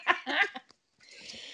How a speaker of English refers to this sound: Let me clear my throat.